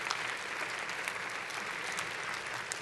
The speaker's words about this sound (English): Would you stand to your feet and let's give God thanks. One more hand clap for him, would you please? Thank you, Lord.